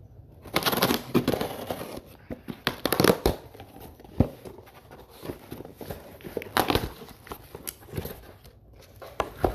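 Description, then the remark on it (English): A 2.9-pound cardboard box, about 2.5 inches tall, being opened with scissors: irregular bursts of cutting, scraping and crinkling, moderately loud, with brief pauses between strokes and no talking. “I don't have a box cutter, I just have a pair of scissors that serve with the box cutter well enough.”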